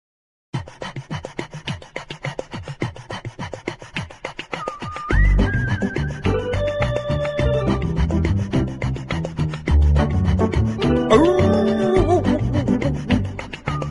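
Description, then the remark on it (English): A dog howls in long, wavering high-pitched cries that rise and fall, following a stretch of fast rhythmic rasping pulses, with a loud, steady low rumble underneath the howls. “But now I feel like that howling is a little bit off-putting for our feline guests.”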